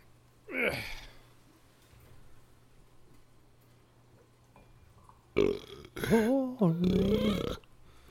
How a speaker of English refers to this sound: There's going to be a lot of that tonight. I had spaghetti. Now I'm going to be burping. Oh, that red sauce. Gives me indigestion.